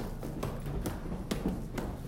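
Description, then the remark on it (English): Feet stomp on the floor in a steady, even rhythm during an exercise while holding a hoop at the 9 and 3 positions: a series of dull, fairly soft thuds roughly twice a second, with no voices. “All right, grab the hoop again at 9 and 3 and stomp out your feet.”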